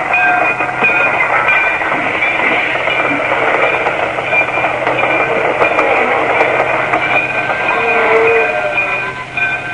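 A passenger train rolls steadily along the rails, a loud, continuous rumble with a droning metallic hum that holds evenly throughout, with no voices.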